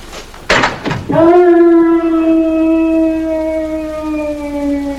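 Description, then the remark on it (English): A man lets out a long, sustained howl, loud and steady with a slowly sinking pitch, following a brief burst of rough noise at the start. “And you do hear it. As I have heard it every hour of every day for 5 long years.”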